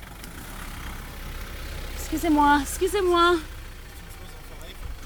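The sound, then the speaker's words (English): A car engine idles with a steady low rumble throughout, while a person briefly speaks over it in the middle. “Right, oh, there's a car.”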